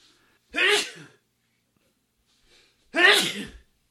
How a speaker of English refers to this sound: Yeah, man, like the sneeze is clipping. We're losing some of the sneeze.